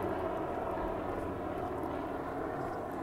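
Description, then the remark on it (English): A steady, continuous helicopter engine drone with a high-pitched whine as it passes overhead, holding an even loudness throughout with no voices, on a sunny, humid day with streaky cloud after overnight rain. “And it's a helicopter.”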